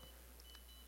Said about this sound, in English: Is that your leg beeping? Yeah, they're off there. Okay. My leg doesn't beep like that.